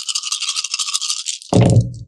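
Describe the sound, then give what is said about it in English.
Metal dice, including a glitch die, rattle steadily in a cupped hand for over a second, then land with a loud, sharp clatter that tumbles briefly and settles. No one speaks. “glitch is going to be my metal dice.”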